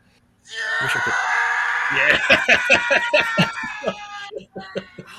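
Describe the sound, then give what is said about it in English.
A loud, drawn-out stock scream from a movie sound effect, known as the Howie scream after actor Howie Long, sustained for about four seconds with a harsh, strained tone, alongside rhythmic thuds and crashes toward the end. “What's the Howie scream? Well, Howie scream. That's the actor who plays this.”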